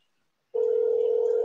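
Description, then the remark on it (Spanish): After a brief silence, a steady telephone tone starts abruptly and holds at an even, loud pitch without a break until the end, with nothing else audible around it, as a phone call is being placed. “él tiene el teléfono en la mano, lo que está haciendo es, ay, es Juan de nuevo”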